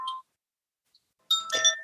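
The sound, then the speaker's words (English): A bright metallic chime is struck, rings briefly and fades, then after a pause a second, fuller strike rings out with shimmering overtones, clear with no talking. The chime is rung to tune listeners up at the start of a guided breathing exercise. “And then I'll do a little sound with it to kind of tune everybody up and get you into the breath. I have my chime here, which is really beautiful.”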